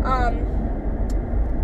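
car interior road noise

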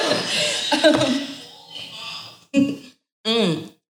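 coughing

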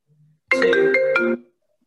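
mobile phone ringtone

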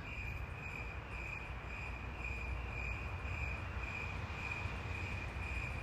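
chirping crickets sound effect

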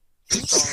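sneeze

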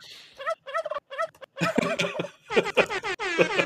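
turkey gobbling

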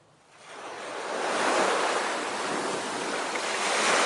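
ocean waves

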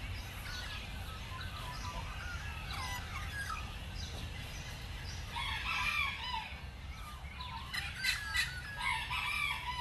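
birds calling at dawn

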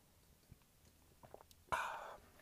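sipping water

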